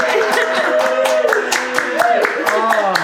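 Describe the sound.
An audience claps and cheers for a woman asked to rise in the newness of life with Jesus Christ, with sharp, fairly steady handclaps running throughout and raised voices calling out over them, loud and sustained for the whole moment.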